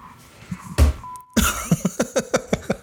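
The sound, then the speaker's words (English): A sharp cough bursts out, then after a brief pause a loud fit of rapid, rhythmic hacking coughs follows, with no talking. “Man, a cough?”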